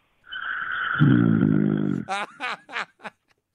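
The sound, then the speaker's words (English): Heavy snoring of a sleeping caller over a phone line to the Bart Winkler Show on CBS Sports Radio: a long, low, rattling rumble, then a quick run of four shorter snorts and gasps that fade out. “Okay, now the snores are heavy again.”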